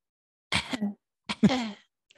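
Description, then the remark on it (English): A person mimics two short, throaty coughs, each a quick rough burst with a voiced tail, separated by a brief pause. Fairly quiet, with no talking. “Come down with a little cough.”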